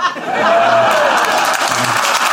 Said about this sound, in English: That's a pity applause. They're clapping for you. They just waited politely till I'd finished.